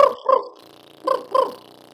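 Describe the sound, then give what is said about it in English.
A player on a small 'baby' didgeridoo imitates a dingo, a wild dog, barking by using the voice while the lips flap. Two pairs of short, punchy woofs come in quick succession, separated by a brief pause over a low steady drone. “So the first easiest one is the dingo. It's a wild dog, so it's a dog barking.”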